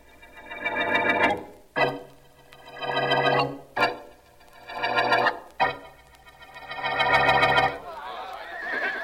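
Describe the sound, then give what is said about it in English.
Horses neigh and whinny loudly, four long, quavering calls following one after another with brief gaps, ending in a rough snorting rustle. “Keep those horses quiet, will you, fellas? We don't need them till the next scene.”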